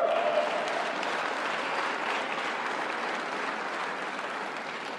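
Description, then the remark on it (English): An audience at a speech in Colorado applauds steadily for about five seconds, a dense, even wash of many hands clapping at a fairly loud, consistent level without pause or buildup. “You can clap for that, man.”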